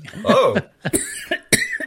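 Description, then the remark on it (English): A loud fit of harsh coughing: one long rasping cough followed by several sharp, broken coughs in quick succession, with no talking. “Just having a coughing fit.”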